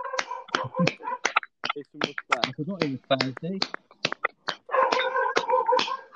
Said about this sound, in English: Lads, Yeah. Should we have a little clap a minute or not?